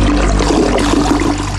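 A toilet flushes loudly, a steady rushing gush of water that fills the short moment without any voices.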